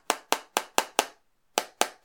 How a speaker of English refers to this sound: You're making me very nervous tapping your phone with another glass thing.